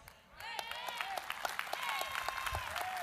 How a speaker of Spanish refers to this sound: Más fuerte ese aplauso a Jesucristo. Give a stronger round of applause to Jesus.